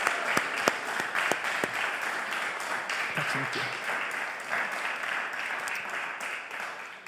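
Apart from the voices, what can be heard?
big round of applause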